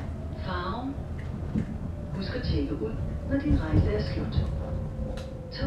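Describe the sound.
A steady low rumble with a constant electric hum from riding inside a moving train, while muffled voices murmur indistinctly in the background throughout.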